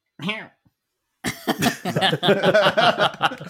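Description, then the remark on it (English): A brief, soft voiced cough, a pause, then a longer string of timid, sputtering coughs, a voice putting on a bashful character cough. “Do a Shy Guy cough.”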